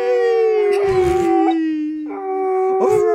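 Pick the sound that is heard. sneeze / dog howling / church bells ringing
dog howling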